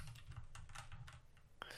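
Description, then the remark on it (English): Quick, irregular clicks of typing a synopsis on a computer keyboard, several keystrokes in a row at a quiet level, over a steady low hum with no voices. “As we're sitting here talking, I'm writing a synopsis.”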